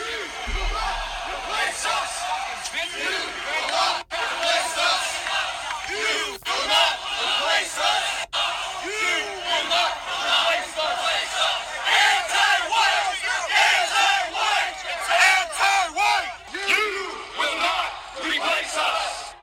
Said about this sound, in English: all those boys with tiki garden torches stormed the campus of the University of Virginia. They were chanting, well, you'll probably remember these guys.